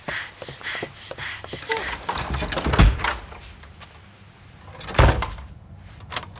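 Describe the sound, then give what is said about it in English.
A house's back door slams shut with a heavy thunk, followed by clattering and a second solid knock as it's locked, amid rustling and scraping. No one speaks. “With the door locked behind me, I ran from the kitchen to the living room.”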